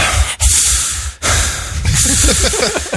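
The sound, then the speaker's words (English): A voice imitates the heavy, huffing breaths of people walking: three loud, hissy exhalations with brief pauses between them, delivered with no words. “You heard a lot of heavy breathing when they were walking.”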